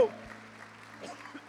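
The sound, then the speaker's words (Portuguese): A church audience claps steadily in praise of the Lord in a dense, crackling wash of applause, with a low electrical hum running underneath and a voice briefly rising over the clapping. “Aplauda o Senhor e adoro, Ele é lindo, Ele é maravilhoso.”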